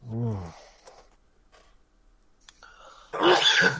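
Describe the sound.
A single loud sneeze bursts out near the end, following a brief voiced sound at the start and a quiet pause.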